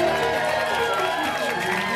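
An audience at a live improvised musical show in Vancouver claps and cheers for the keyboard player in a dense, continuous wash of sound, holding steady at a fairly loud level for the full two seconds with no pause.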